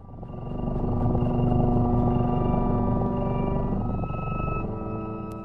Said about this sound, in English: Let's hear some cat music.